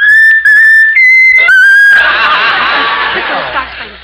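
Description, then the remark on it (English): A pet bird named Raffles, asked to whistle its favourite tune, whistles a short tune of four clear, sustained notes that step between pitches, then breaks into loud, raspy chattering, with no one talking. “Hello, how about whistling the tune that you like best of all? Whistle, whistle, whistle.”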